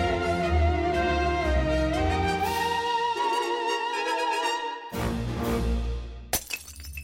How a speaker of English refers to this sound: Whoa. What are you doing? I'm smashing the coffee cups.